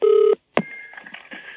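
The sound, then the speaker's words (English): A steady dual-tone telephone keypad beep sounds briefly and loudly as a number picked at random from the phone book is dialed, then a click, followed by a fainter, continuous tone with slight fluctuations, like a phone line connecting. “We just thought we'd ring a number at random in the phone book”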